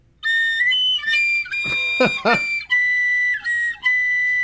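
An Irish penny whistle plays a short melody, bright sustained notes that slide and step between pitches, with a quick ornamented flurry in the middle and brief breaths between phrases.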